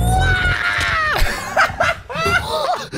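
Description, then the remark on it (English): A voice imitates the Mario video-game falling-scream sound effect after falling in a game, a long high wail that drops sharply in pitch, followed by short whooping cries and laughter over loud background noise. “You made like the Mario scream sound effect when you fell.”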